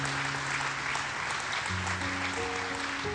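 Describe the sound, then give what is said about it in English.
Sustained audience applause for people walking out to the healing room fills the whole stretch, a dense steady wash of clapping at even loudness, with a low sustained organ or keyboard chord shifting underneath. “And give them a hand, everybody.”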